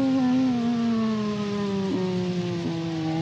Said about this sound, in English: Oh, it's sirens. I'm sorry.